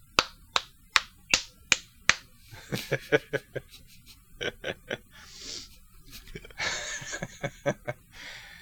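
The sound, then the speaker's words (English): Sharp hand claps mimic slapping: five evenly spaced claps, then a quicker, uneven flurry, with soft breathy laughter and snickering in the pauses. “And then during the periods of silence, you just hear... applause.”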